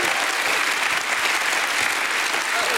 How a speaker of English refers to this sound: Give him another hand clap and a shout of praise.